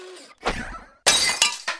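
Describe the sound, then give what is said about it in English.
A gym weight thrown into an apartment window smashes through the pane of glass, followed by a bright burst of shattering and tinkling shards, loud, with a second crash of breaking glass near the end. “A gym weight.”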